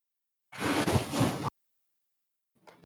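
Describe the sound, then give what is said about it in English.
A cat knocks objects over: a loud second-long burst of rustling and clattering, then silence with a faint brief scrape near the end. “No, don't knock them over. Oh, no, my cat.”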